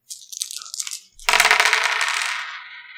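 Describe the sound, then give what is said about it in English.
About a second of dice rattling and shaking, then four dice tumble out in a loud, bright clatter that rings on and fades over two seconds. No voices. “Yeah, let's see this what we got. The only thing I have that helps at all. Four dice.”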